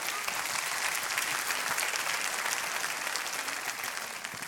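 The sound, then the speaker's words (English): An audience claps their hands during a sermon in a dense, steady burst of applause, loud and continuous for several seconds with no talking over it. “A hope in, come on, clap your hands.”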